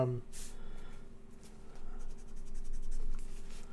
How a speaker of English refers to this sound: Sorry guys, I'm going traditional pen and paper tonight. Yeah, I like it. Makes me feel more of a role player.